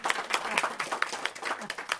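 An audience claps together in a steady, dense patter of many hands, moderately loud and sustained across the whole stretch with no one speaking.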